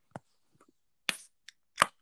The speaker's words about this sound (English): Are you guys ready? This is the Diet Coke opening.